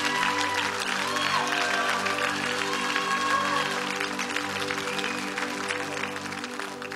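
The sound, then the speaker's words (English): A church audience claps their hands in sustained, dense applause to give God praise, with voices rising and cheering underneath and a steady low musical hum, fading slightly toward the end. “Would you clap your hands one more time, lift your voices, and give God praise.”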